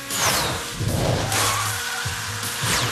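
A car engine in a racing video game revs loudly and steadily during a race against a Camaro, with rising and falling pitch sweeps like tires squealing or cars whooshing past, no voices present.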